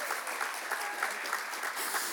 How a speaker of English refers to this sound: He wants you to clap for him right now. Can we just get that out of the way?